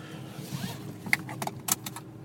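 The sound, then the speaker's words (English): A car seatbelt is pulled out with a quick ratcheting whir and a couple of scrapes, then latched with a sharp click as the driver buckles up while leaving a meeting, over a low, steady cabin hum. “And should probably buckle up.”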